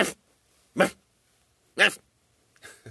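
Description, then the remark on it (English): A person imitates a dog with four short, sharp barks spaced roughly a second apart. The barks are loud, with the last one softer and rougher, and there is no talking. “Women like that should just start barking.”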